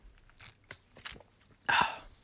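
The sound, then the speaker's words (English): A swallow of Mountain Dew soda after twisting off the cap: several soft, wet mouth clicks and slurps, then one louder gulp near the end that fades quickly. No one speaks. “We twist off the cap and we'll take a nice little glub.”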